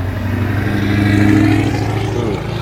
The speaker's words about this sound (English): Don't you love when those big cars come by?